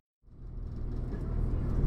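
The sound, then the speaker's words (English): A steady, deep rumble inside a train heading into Aberdeen starts after a brief moment of silence and swells gradually louder, with a faint airy hiss riding above the low drone. “Okay, I'm on the train.”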